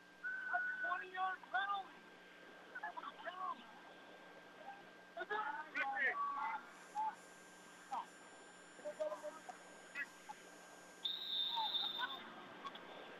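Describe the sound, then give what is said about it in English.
A football official's whistle gives a single sustained shrill blast near the end to stop play in a game with the OFA Blue Devils, rising over a murmuring stadium backdrop with muffled voices talking throughout. “Official will blow the whistle. Stop action here.”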